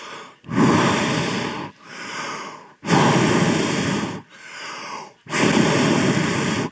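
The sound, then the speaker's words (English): Loud heavy breathing in a steady rhythm: three long, harsh inhales alternating with shorter, softer exhales, from a winded runner without headphones on the seventh mile of a race. No talking. “When you're on your 7th mile running and you have no headphones and all you can hear is your own heavy breathing?”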